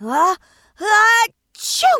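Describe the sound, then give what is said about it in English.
A voice imitates the sneeze of Fireball, a fire-breathing dragon: two drawn-out, strained vocal build-ups followed by a loud, breathy, hissing burst. “Fireball, the fire-breathing dragon, sneezed.”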